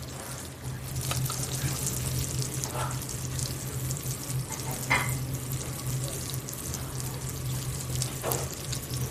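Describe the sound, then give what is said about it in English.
Rosemary crackles and sizzles in hot butter in a pan, a steady frying hiss with scattered sharper pops and a low hum underneath, no voices. “If you can hear that rosemary, I mean, you can hear that almost kind of crackling.”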